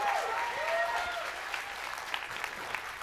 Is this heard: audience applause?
yes